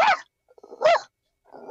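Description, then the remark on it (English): Someone mimics a happy dog bark with their voice: three short, bright yaps spaced evenly apart, fairly loud, with quiet pauses between them and no talking. “Happy barking.”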